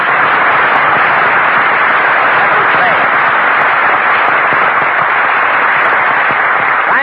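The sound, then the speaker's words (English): A large studio audience bursts into sustained, dense applause, loud and steady throughout, with countless overlapping claps forming a continuous roar and no talking. “Never mind, Jack Benny, applause.”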